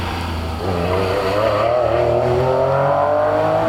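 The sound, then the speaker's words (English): A Porsche 996 Turbo engine revs up steadily, its pitch climbing smoothly through the gears, loud with no talking over it. “996 Turbo. A lot of electronics on those cars.”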